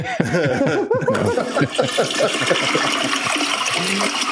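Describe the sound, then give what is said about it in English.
A toilet flush sound effect rushes loudly and steadily for several seconds while people laugh and chuckle over the gushing water. “You got a flush sound?”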